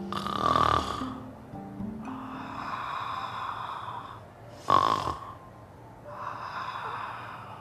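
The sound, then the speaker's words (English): Loud snoring with a rasping, buzzy texture, several long drawn breaths alternating with sharper snorts in a slow, uneven rhythm, with no talking. “They stole into the very room where the princess slept, snoring soundly.”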